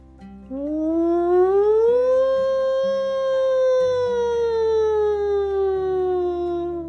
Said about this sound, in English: As the alarm sounded, the entire Spy Kids headquarters ran outside.